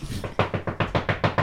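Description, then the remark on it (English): A rapid, forceful series of about six heavy knocks on a door, evenly spaced and loud, pounding in an insistent, angry rhythm with no voices. “Oh, that's an angry knock.”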